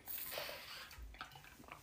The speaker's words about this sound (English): Actually, let me take a sip of water before I start this content here.